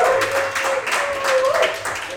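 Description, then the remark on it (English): A crowd applauds steadily for Jack for a couple of seconds, a dense wash of many hands clapping at once, with a faint sustained tone running underneath. “So I ask you, as you did for Mike and for Coach, please give Jack a round of applause now.”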